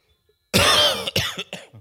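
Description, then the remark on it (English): A harsh cough bursts out after a moment of silence, followed by a few shorter, raspy coughs trailing off in quick succession. “Sorry about the cough.”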